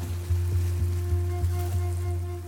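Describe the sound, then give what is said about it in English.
A water taxi's engine drones with a steady low hum, fairly loud, while soft regular thumps, like the hull bumping over small waves, repeat every half second or so. No voices. The water taxi is crossing from Fair Harbor to the village of Kayukit on the west coast of Vancouver Island. “We arrive at Fair Harbor, the end of the road, and take a water taxi over to the village of Kayukit.”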